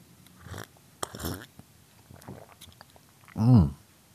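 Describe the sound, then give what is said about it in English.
Sips and slurps from a cup of weak tea, a few short wet bursts, followed by a loud, satisfied voiced exhale near the end. “So a quick sip of the old tea.”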